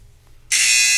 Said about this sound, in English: I'm sorry if our buzzer is annoying.